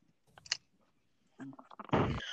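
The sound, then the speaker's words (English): A Band-Aid wrapper is handled: a few soft crinkles and clicks, then a loud, sustained tearing rip of paper as it is pulled open. “I am also opening a Band-Aid.”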